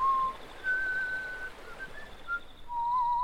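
A man whistles a slow, wandering tune, pure sustained notes sliding between pitches with short pauses between phrases, heard alone against quiet background hiss.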